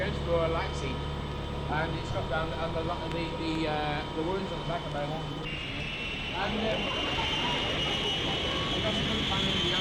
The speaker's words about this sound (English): As the plane leaves the earth, many of the passengers turn their heads to look out the window.